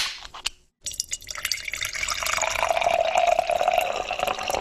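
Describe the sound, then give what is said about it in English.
Beer poured steadily into a glass, a continuous fizzing gush that rises in pitch as the glass fills, after a brief clink and a short pause at the start. “You pour that perfect every time.”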